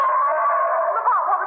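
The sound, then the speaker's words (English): A gorilla roar heard as a steady, sustained howl lasting over a second, loud and mid-pitched with a thin, tonal quality, wavering slightly near the end. “It sounded like a live gorilla.”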